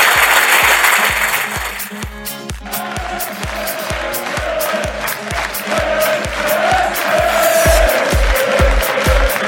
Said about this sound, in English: Can we have a round of applause, please? Thank you very much.